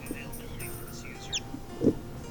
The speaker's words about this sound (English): You can also set up chimes for 15 or 30 minutes or an hour. I chose to have bird chirps instead of chimes. Helps me know the watch is still alive.